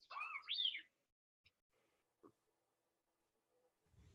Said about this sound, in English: That was R2 telling me that they have a text. Oh, I see. Sorry. All right. He speaks in bleeps, you know.